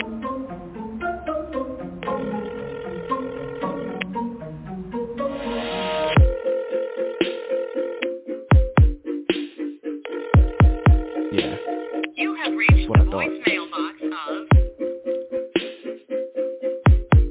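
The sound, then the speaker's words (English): A phone dials out to a woman with a quick series of electronic tones, then a repeating ring tone pulses over and over with no one picking up. “All right, let me call her real quick. Come on, pick up. Yeah, she's not going to pick up.”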